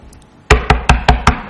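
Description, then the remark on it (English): Five loud, evenly spaced knocks on a door, sharp, each with a short resonant thud, following a moment of quiet room tone with no voices. “Bang on the door again.”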